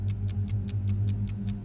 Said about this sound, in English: As the children of Bath filled the schoolhouse that the community was so proud to have, their symbol of a bright future on top of a hill in town, hidden away in the north wing is an alarm clock ticking away.